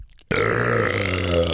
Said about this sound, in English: Oh, did you read the comment that said, yes, please never burp again, I was eating breakfast.